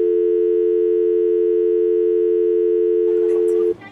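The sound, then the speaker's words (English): A steady, unbroken telephone tone hums at a single mid pitch for several seconds after a dropped call, loud and even, before a voice cuts in and the tone stops abruptly. “We seem to have lost Mr. Monkey, but we'd like to thank him for his commentary this week.”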